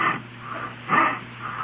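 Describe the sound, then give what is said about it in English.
A housewife runs her rough, cracked hands over her husband's face, making dry, scratchy rasping strokes: three swells of sandpapery friction about a second apart, moderately loud, with no talking. “Well, that's the sound made by the hands of another housewife when she runs them over her husband's face. Rough and cracked, you see.”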